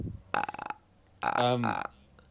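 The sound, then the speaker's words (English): Two fairly loud burps: a short rumbling one, then after a brief pause a longer, more drawn-out and tonal belch. “I'm burping a lot.”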